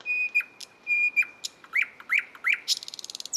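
A nightingale sings alone, clear: long pure whistled notes, a series of quick rising chirps, then a fast rattling trill to finish.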